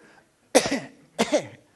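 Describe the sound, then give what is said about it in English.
Two harsh, phlegmy coughs about half a second apart, loud with a rough, wet edge, alone against a quiet background. “I've got a bit of phlegm.”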